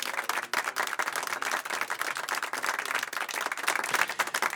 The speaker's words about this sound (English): Some applause for that.